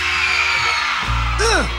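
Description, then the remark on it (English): A live concert crowd screams and roars along at the singer's urging in a steady, loud wash of noise, while one voice near the end lets out a rising-then-falling whoop over a low, sustained hum. “Can you scream just a little bit louder now?”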